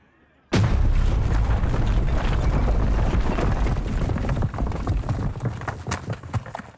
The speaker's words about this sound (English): There was a thump, small for an instant, like hitting a speed bump. Then they were slammed by the hand of God as the explosion rocked the convoy.